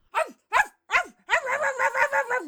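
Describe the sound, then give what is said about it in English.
A person imitates a dog barking toward an owl: three separate loud barks, then a quick run of rapid, yappy barks strung together, with no other talking. “Did my barking scare away the owl?”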